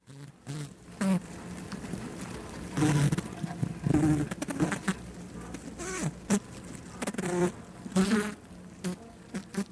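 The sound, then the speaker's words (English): A dense buzzing of many communicating bees, with droning tones that rise and fall in waves and occasional louder swells as individual insects pass. “These are the bees.”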